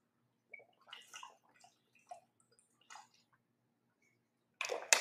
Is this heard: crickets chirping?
no